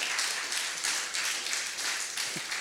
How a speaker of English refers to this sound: It's funny that you clapped. I'm wondering if Martha clapped that day.